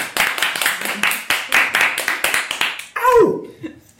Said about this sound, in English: and I think, you know, I haven't been upholding it, but I think we need to do the obligatory applause.